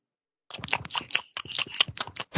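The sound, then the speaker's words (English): Wet crunching and smacking of someone chewing food, a quick irregular run of crackly bites and mouth noises after a brief silence, with no talking. “Or finish chewing.”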